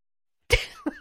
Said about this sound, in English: Sorry. I was trying to hold it back and it didn't quite work. So I just yawned